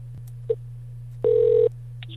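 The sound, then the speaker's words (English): An outgoing phone call, placed by pressing a button, rings on the line: a short beep, then one steady ringback tone lasting about half a second, followed by faint blips, all over a constant low electrical hum. No one speaks. “Shows it's ringing.”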